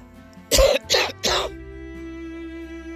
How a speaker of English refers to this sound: The cold, the cough is really, really nasty.